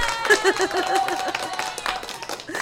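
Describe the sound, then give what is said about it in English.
Applause from an audience: a steady, moderately loud patter of many hands clapping for a couple of seconds, with some voices faintly mixed in underneath. “Look, we'll give you a round of applause.”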